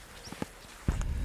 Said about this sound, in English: Is that making that chucking noise? It's funny enough, yeah. It's very distinct. Yeah, I mean, you couldn't get it wrong with any other bird on the heath. Sound of two little rocks being smacked together.